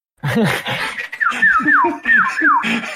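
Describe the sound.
A person whistles a short, lilting tune of several swooping notes, fairly loud, after a brief burst of low vocal sound at the start; the whistle tune from the game Zelda: Breath of the Wild.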